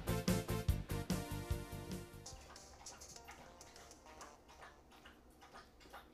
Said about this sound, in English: This is my dog drinking a gallon of water every time he comes to the water bowl.